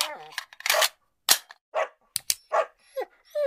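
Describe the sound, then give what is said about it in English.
Several sharp, loud pops like cap-gun or toy gunshot effects fire in quick, irregular bursts, mixed with short dog-like yelps and barks. “Oh, is this where you put like a gunshot sound effect?”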